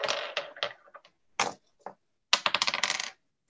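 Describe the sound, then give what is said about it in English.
Dice clatter onto a hard table: a tumbling burst of clicks, a few scattered single knocks, then a rapid rattling flurry as they roll to a stop. No voices. “Uh-oh. I lost the dice.”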